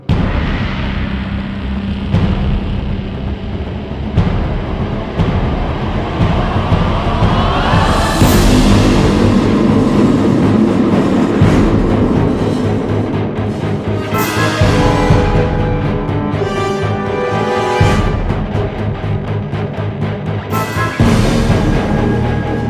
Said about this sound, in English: So I got the guy and his instrument from Star Trek the Motion Picture. And we recorded this 17-foot-long piece of metal with piano wire running across it. And that's that really low bang that you hear throughout the raw data score.